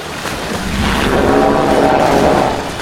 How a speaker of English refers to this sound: The water of Dragon Cove Bay swirls into a raging whirlpool. Large waves crash as the claws that rend life rise from the depths of the bay.